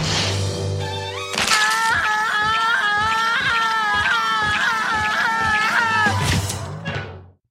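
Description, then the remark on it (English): A long, drawn-out cartoon scream from the pigeon character Pesto being crushed by a hot dog cart wails loudly for about five seconds, its pitch wavering and shrill, over a steady low thumping beat before cutting off. “And has this scream that goes on for a long time, which sounds, it sounded pretty bad.”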